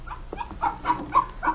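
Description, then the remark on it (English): A puppy barks in a quick run of about five short, high-pitched yaps, fairly loud, with no one talking. “Get that mutt out of here and make yourself useful.”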